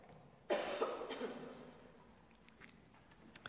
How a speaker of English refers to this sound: Thanks, I'm about to cough.